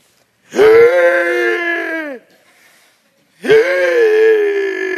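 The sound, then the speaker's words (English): A person wearing a mask lets out two long, loud, strained screams while running around a classroom, each lasting about a second and a half, separated by a short breathy pause. The voice is harsh, with no words. “And I was running around the classroom doing that awful scream.”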